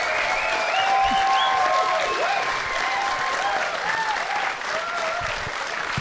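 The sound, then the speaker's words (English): An audience bursts into a round of applause, steady and loud throughout, with scattered whoops and cheers rising above the dense clapping. “Can we please have a round of applause?”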